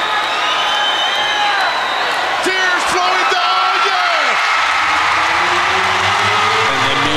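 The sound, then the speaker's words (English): A large crowd, on its feet, roars in a sustained ovation for Randy Savage and Elizabeth, with loud cheering, whoops and yells rising and falling over a dense wash of applause throughout. “Listen to the ovation!”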